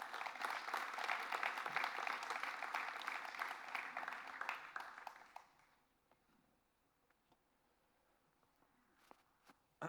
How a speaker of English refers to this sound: So let's give him a round of applause to come up.